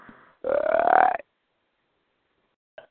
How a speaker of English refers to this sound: Or a belch. No, I'm just kidding.